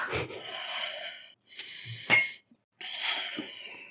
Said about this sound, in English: like gasps.